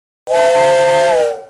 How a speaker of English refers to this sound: There's that train.